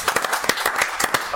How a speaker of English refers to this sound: Right, let's turn our attention back to the FA Cup. And it's time for another round of applause, this time for Kevin Nolan. Kevin, congratulations.